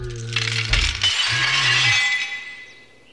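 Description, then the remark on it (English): A pane of glass shatters with a sharp crash, followed by a bright tinkling spray of shards that rings on and slowly fades over a few seconds, loud, with a low hum beneath. “Well, a pane of glass impaled him through his head, so yeah.”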